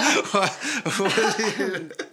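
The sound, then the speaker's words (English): A fairly loud series of coughs and throaty rasps from a person with a long-lasting cough, mixed with voiced grunting sounds, repeating in uneven bursts over a couple of seconds. “God, I've had this cough forever, and I'm pretty sure I have long COVID.”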